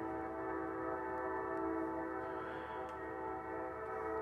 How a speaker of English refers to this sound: Anyways, this train is really getting on my nerves in the background. It's really annoying.